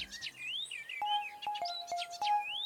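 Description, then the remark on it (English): Birds chirp and whistle continuously in bright rising and falling calls from a bird family's nest in the forest, with a steady lower tone and a few sharp ticks underneath; no one speaks. “Oh, this must be the nest of the birds that keep stealing from Miss Green.”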